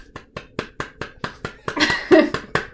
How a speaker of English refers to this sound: Giving golf claps. Golf claps are great for podcasts. They don't disrupt.